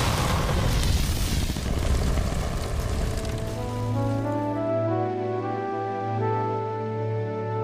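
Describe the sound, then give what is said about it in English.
A loud, broad roaring blast as flammable fumes from cooking meth ignite inside an unventilated trailer fills the first few seconds, then fades into a steady low droning tone with no voices. “I was releasing smoke into the flammable liquid, watching the meth drop when the fumes ignited.”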